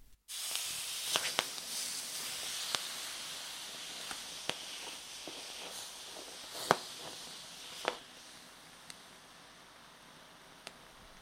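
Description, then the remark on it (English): Hot stones dropped into water over grains in a kurna sizzle: a steady, bright hiss runs throughout, broken by scattered sharp pops and crackles, a couple of them louder, as the bigger stones rumble. No one speaks. “and you get this instant sizzle and a puff of steam come off the water as it goes in, and then a couple of the bigger stones just carried on rumbling as they sat on the grains under the water.”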